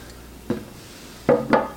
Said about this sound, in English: All right, so I'm gonna, just for demonstration, get out a little pint glass here. And so let's say you're at a party, you have a nice pint glass.